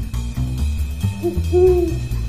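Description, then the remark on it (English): A human voice imitates an owl's hoot as a signal call, giving a short hoot followed by a longer, wavering one, clear over a low, steady rumbling background. “I let out our signature call to be subtle, but still let him know I was there. Infamous, unmissable call of the pre-war owl.”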